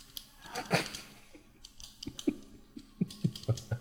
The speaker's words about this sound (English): Get some nails and a chalkboard. Just some clicking pens.